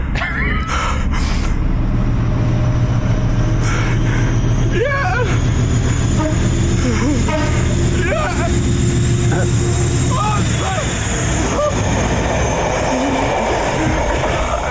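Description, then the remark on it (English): A train rolls steadily along the rails, a continuous loud rumble with rhythmic wheel clatter and occasional high squeals, while voices murmur faintly underneath. “All right, let's watch this guy with his fucking trains.”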